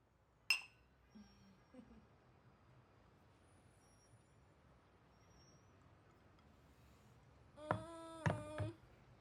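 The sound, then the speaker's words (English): Glasses clink together in a toast: one sharp tap early on, then a quick cluster of bright, ringing clinks near the end over quiet, with no one talking. “We're all watching. Cheers.”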